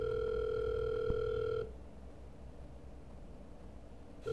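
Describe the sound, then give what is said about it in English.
A steady electronic telephone tone holds for about a second and a half, then cuts to faint line hiss before the tone starts again at the very end, an unanswered phone call ringing out. “I wasn't able to reach Orla over the phone”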